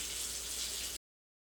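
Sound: water running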